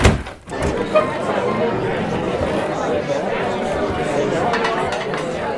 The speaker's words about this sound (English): All right, folks, what do you say we barge through those saloon doors